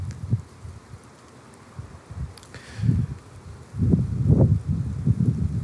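Gusty wind roars in uneven low surges, swelling and fading over a steady hiss, with a faint rustle of branches and leaves underneath, as it bends the limbs of a pine tree with gnarly bark growing out of rocks. No one speaks.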